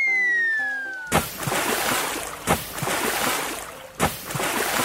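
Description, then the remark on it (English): A falling whistle tone gives way to three heavy splashes as children leap one after another from the top of a rock into the water, at steady intervals, each followed by loud churning, sloshing water. “Saying this, the children climbed onto the top of a rock and began to leap into the water one after the other.”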